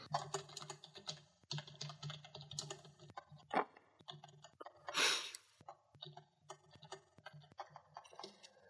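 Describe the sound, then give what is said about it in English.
Rapid, irregular keyboard clicks of someone typing a message asking whether it is Nevada, with short pauses between bursts, one heavier key thump and a brief louder rustling burst midway. No one speaks. “How did I type out Nevada?”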